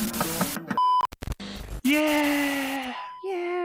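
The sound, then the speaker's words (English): A man imitates an air horn with a loud, buzzy, sustained blast whose pitch sags slightly, followed by a shorter second blast, after a jumble of brief beeps and noises. “He does a really good air horn. Yeah, human air horn.”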